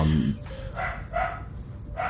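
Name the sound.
dogs barking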